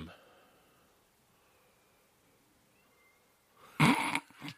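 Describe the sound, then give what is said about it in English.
A cat outside gives a single drawn-out, distant meow near the end, breaking a stretch of quiet hush. The cry is brief and stands out clearly against the silence. “I don't know if the mics picked it up, but there's a cat outside that's meow. Just a distant meow.”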